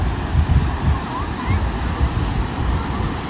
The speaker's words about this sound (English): So I want you to imagine, as you listen to the waves, which I'm going to shut up for a second and let you listen. Hopefully you can hear it pretty good.